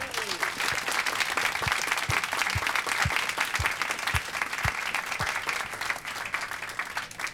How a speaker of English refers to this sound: We have got more treats in store for you in the shape of the wonderful Chief Executive Officer of Penguin Random House. Please give a very warm round of applause